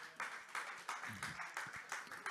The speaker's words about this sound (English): And if you're thankful for that, can you give God a mighty hand clap of praise?